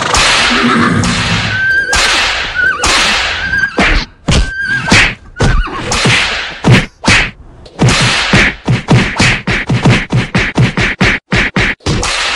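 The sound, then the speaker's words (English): A sound effect of beating a dead horse: repeated heavy thwacks and whip-like cracks, loud, with a brief horse whinny at the start, the blows speeding into a rapid flurry before ending. “That was beating a dead horse.”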